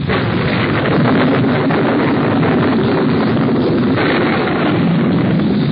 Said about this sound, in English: Listen to that thunder. It seems to be staying close to us, too. Storm must be right over our heads.